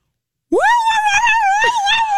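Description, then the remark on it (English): A voice imitates a siren with a loud, sustained wailing tone that swoops up sharply at the start, then wavers and dips in pitch, with strong harmonics and a dog-like whine. “Okay, that also sounds like an injured dog.”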